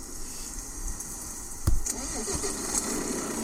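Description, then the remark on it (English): The engine of a red Renault truck cranks and starts in the rain with a brief loud burst, then settles into a steady low idle rumble, with a faint noisy background throughout. “Oh, first I'll turn on the truck, sorry.”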